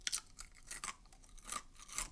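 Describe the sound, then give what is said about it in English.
Crunchy food being chewed, with about four or five crisp, crackling bites at an uneven pace and no talking. “Crunch, crunch, crunch.”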